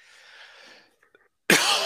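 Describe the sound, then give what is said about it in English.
A soft breathy hiss fades into near silence with a couple of tiny clicks, then loud coughing bursts in abruptly and carries on to the end. No one speaks. “That's just made my cough worse.”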